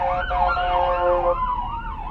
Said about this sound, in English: Okay, well, that is an ambulance. I hope wherever that's going, the people are going to be okay.